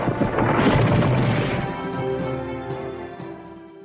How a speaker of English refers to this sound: Flapping his heavy wings furiously, he flew towards the nearby mountains, but the heavy weight of the sheet restricted his movements, and, unable to fly any further, crashed into the forest.